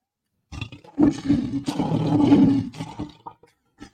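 A lion lets out one loud, rumbling roar, deep, swelling and sustained for a couple of seconds before cutting off, followed by a few faint ticks.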